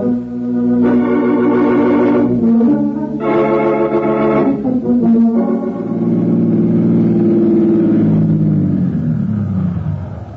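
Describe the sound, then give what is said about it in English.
A car engine hums loudly and steadily while driving through New York traffic, revving through a few surges and shifts before easing down as the vehicle slows near the end; no voices. “You made nice time through this New York traffic”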